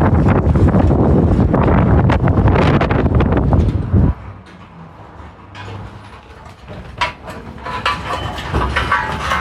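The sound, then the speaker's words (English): Heavy wind buffets the microphone with loud, low rumbling gusts for the first few seconds, then eases into a softer, uneven whoosh with intermittent bursts of rustling. “Oh, it is windy.”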